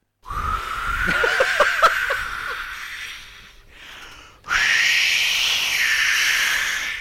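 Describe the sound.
Someone imitates wind with their voice as a Foley sound effect: a sustained breathy, whistling howl that wavers in pitch, a brief softer breath, then a higher, louder whooshing howl that holds to the end.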